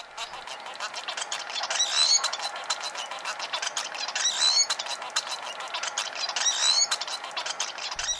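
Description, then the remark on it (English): A munia's thin, squeaky song in three short bursts of high chirps and whistles, spaced a couple of seconds apart, over a steady background hiss with no one talking. “Let's go with the munia first.”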